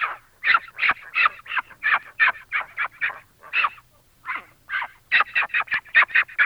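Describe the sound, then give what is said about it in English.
A baby pig squeals in a rapid string of shrill, raspy, loud bursts, with a short pause partway through before the squealing resumes. “They may be huge when they grow up, but that's the sound of a baby pig.”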